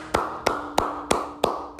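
Six sharp, evenly spaced claps in a steady rhythm, about three per second, over a constant background hum, with no one talking, as the audience claps for themselves.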